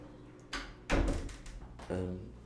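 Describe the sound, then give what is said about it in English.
A door is pushed shut, a solid low thud followed by a couple of lighter knocks and rattles, with faint muffled voice-like sounds in the background. “Shut the door, that's better.”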